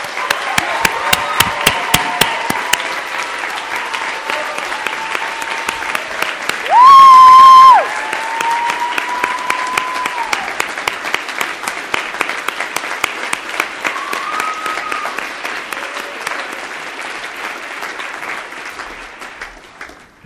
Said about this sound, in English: So, without further ado, because the professors are probably twitching at how late this whole thing has gone, I would like you to all give a round of applause